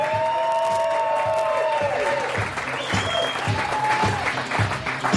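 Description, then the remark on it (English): A live audience at CSC Philadelphia, home of comedy sports, cheers and applauds steadily for several seconds at the Tony Bruno Show live, dense clapping with whoops and high shouted cheers rising over the crowd noise. “Welcome to CSC Philadelphia, home of comedy sports and the Tony Bruno Show live as the crowd goes wild.”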